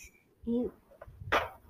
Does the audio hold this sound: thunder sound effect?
no